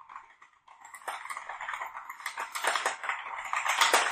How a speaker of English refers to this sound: Typing really fast.